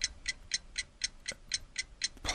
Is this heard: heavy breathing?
no